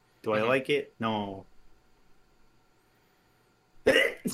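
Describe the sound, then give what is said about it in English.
A pair of loud, voiced sneeze bursts in quick succession, followed by a quiet pause and then another short, sharp burst of sound at the end. “Bless you.”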